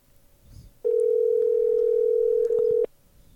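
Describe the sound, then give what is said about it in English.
A call to a cell phone rings out unanswered with one steady, mid-pitched ringback tone lasting about two seconds, loud and unbroken, then cuts off into quiet background with no voices. “Tara? Tara, if you don't answer... Oh. Can we leave our voicemail”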